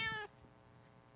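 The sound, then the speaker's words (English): A single short meow from a female pet cat, fairly loud, lasting about a quarter second before fading into quiet. “This is my cat. She wants to say hello.”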